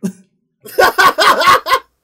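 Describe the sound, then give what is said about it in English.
A short gasp, a brief pause, then a rapid run of about five loud, sharp sneezes bursting out in close succession, each an explosive breathy blast. “Bless you, man.”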